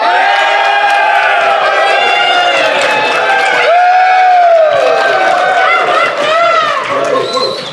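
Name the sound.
large crowd cheering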